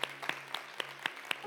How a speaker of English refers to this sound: Can we just give a high five to our dream team? A high five, a hand clap for our dream team.